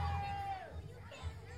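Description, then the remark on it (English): A crowd of kids at a wrestling event cheers and chatters, a steady wash of voices with a brief high whistle-like tone near the start, continuing throughout. “It sounds like Cheers to me, Andy. They love you.”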